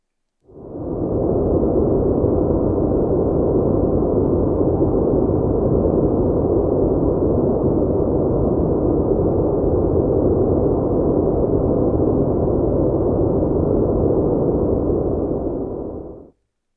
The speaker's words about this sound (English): When you tune an analog radio set or an analog television between stations and you receive that static hiss, a tiny fraction of that hiss is actually the cosmic background radiation. Let's have a listen.